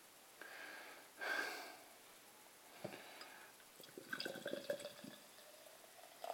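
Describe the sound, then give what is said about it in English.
Beer from a 330ml can fizzing and foaming over a Salopian Brewery glass as it is poured: a brief pouring hiss, then a soft, steady crackle of popping bubbles that grows busier toward the end, fairly quiet, with no voices. “Wow, it's bubbling out the top again.”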